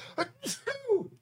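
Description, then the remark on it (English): A single sneeze with a couple of quick breathy build-up gasps, then a sharp hissing burst trailing into a voiced, falling sound, all within about a second. “I'm gonna sneeze.”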